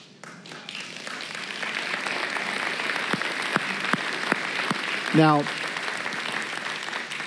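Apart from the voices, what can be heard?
audience clapping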